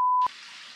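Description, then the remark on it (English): A short, loud electronic beep cuts off into a steady, hissing rush of water running through a building's pipes, moderately loud and continuous, with no one talking. “Someone peeing, or is that running water?”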